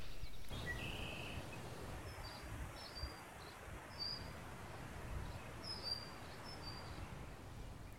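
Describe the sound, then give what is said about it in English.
Faint birdsong at a birding area at Hog's Back: scattered short chirps and trills rise above a steady outdoor hiss and low rumble, with no one speaking. “It's known to be a really great birding area, full of waterfowl, warblers, grosbeaks, buntings, and even pelicans.”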